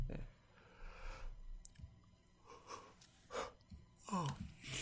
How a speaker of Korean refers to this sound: 왜 이렇게 하품이 나는지 모르겠네.